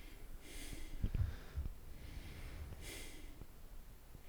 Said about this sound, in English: you all right? Yeah. You're breathing very heavy.